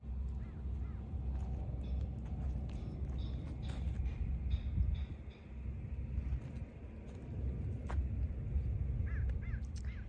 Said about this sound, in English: Okay, hello dear, the bird again.